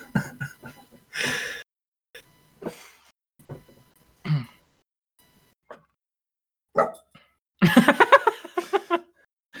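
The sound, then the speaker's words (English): A female dog barks in the room, sitting in a chair, with a few sharp, separate barks and then a louder, rapid run of yelps near the end, broken up by quiet pauses and small scuffling noises. “We have a dog in the room now.”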